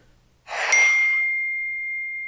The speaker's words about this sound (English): is that my phone? That was my phone. Okay, I'm turning it off now. I thought I was hoping it was your phone.